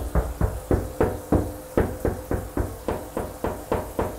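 A steady series of about fourteen sharp, hollow taps on a loose bathroom tile by a shower or bathtub with missing grout, checked during a home inspection, evenly paced, with a slightly dull, rattly knock to each strike. No talking.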